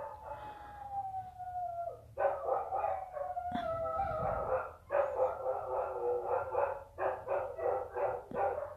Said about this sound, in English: The dog's crying. She's crying. She can hear me talk, so she's gonna start crying. Watch. See? Anyway, I don't know if you can hear. I'm assuming you can hear her.